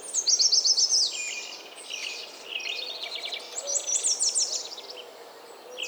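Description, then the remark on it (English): A busy mix of birds calling at once: an American goldfinch's whiny call, a least flycatcher's chebek repeated about once a second, a common grackle's harsh notes and a Bullock's oriole singing, overlapping in a continuous, moderately loud chorus with no talking. “An American goldfinch is making her whiny call, and the least flycatcher is chebecking once every second or so.”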